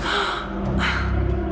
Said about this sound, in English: A heavy breath pulling in fresh air.